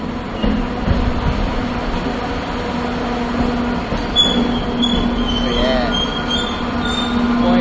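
A train rolls along the rails with a steady, dense rumble and a low sustained hum; partway through, thin high-pitched wheel squeals join in and continue to the end.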